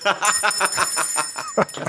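A bell rings rapidly and repeatedly, its bright metallic tones sustaining and overlapping throughout, moderately loud.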